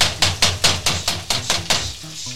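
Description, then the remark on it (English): Seven or eight loud, sharp thuds in a steady rhythm as a burger patty is smashed flat with an improvised tool instead of a hamburger press, each hit bright and slapping, with no talking. “When you don't have a hamburger presser, you have to improvise.”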